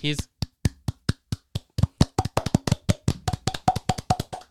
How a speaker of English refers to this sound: That was too much force to clap.